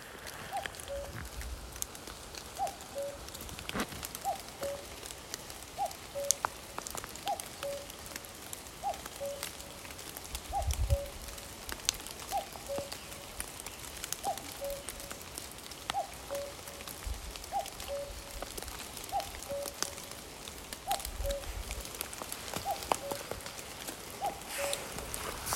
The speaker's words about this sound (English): Rainfall there with the cuckoos behind. I was there. I was there on the flanks of Sheep's Tor.